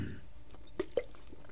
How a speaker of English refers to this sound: That should clean all that beautiful fat that's left over on your palate. A little sip of water.